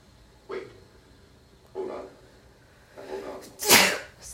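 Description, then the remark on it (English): A rapid series of four sneezes from a person with allergies, each one louder than the last, ending in a sharp, explosive final sneeze. “I get like straight up on sneeze attacks.”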